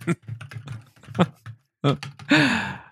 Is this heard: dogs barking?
no